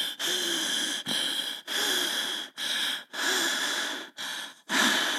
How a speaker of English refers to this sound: Half of her portly body was wet from the fall, and then the wheezing began. The pig nose had swollen.